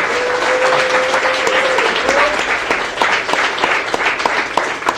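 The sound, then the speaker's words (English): A crowd applauds steadily, dense clapping at a loud, even level, with a brief whistle-like tone near the start and no talking. “Well, how about a round of applause for one and only?”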